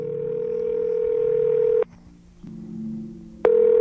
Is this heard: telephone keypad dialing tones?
yes